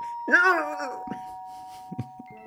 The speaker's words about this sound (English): Someone rings the doorbell.